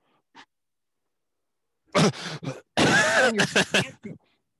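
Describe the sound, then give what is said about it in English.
After a near-silent pause of accidentally held breath, a voice pants heavily: a sudden loud gasp followed by several quick, breathy, rasping exhalations and a final short huff. “All of a sudden, you are panting heavily.”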